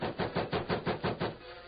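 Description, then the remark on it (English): Sharp rapping on the door of a small cabin before dawn: a quick, even run of about seven hard knocks in just over a second, then it stops. No one speaks. “He was roused from sleep before dawn by the sharp rapping on his door.”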